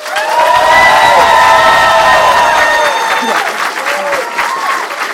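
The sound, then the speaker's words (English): A live audience breaks into loud, sustained applause mixed with high-pitched cheers and whoops, voting by applause for the winner of a cat quiz, holding steady for several seconds before easing slightly toward the end. “So, audience, would you tell me by applause who you think won this cat quiz?”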